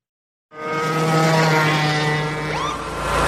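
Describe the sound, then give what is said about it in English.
A lawnmower's small engine starts up after a brief silence and runs steadily at high revs as it speeds at 40 miles an hour through a residential area, a loud buzzing drone with harmonic whine, briefly rising in pitch near the end. “Sure, but I'm on my lawnmower.”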